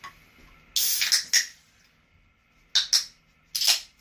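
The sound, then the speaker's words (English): A bottle of beer is cracked open in stages, with three sharp, airy hisses of escaping gas. The first is longest and loudest, followed by two shorter bursts, with no voices. “So, okay, so I'm opening now.”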